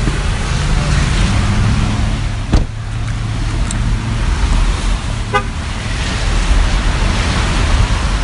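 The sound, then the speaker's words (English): Heavy rain pours down at a park in a steady, loud, unbroken hiss, with a low idling engine rumble beneath it and a single sharp knock partway through. “It's pouring rain.”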